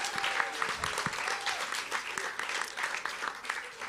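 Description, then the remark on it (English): An audience at a church service claps three times for triplets at a dedication, a dense, steady patter of many hands that holds for about four seconds at a fairly loud level, with no clear breaks between individual claps. “Guys, can you please clap three times for the triplets?”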